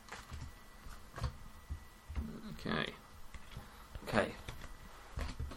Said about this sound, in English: they're not actually good cards to shuffle.